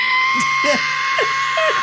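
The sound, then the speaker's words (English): A person's voice imitates a screeching jet: a loud, steady, high-pitched screech fills the whole stretch without letting up, with a few short, low chirping sounds dropping in and out underneath. “This is what he heard, apparently. I heard a screeching, saw that between a screeching.”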